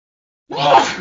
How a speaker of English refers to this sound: Well, I think I'm about to sneeze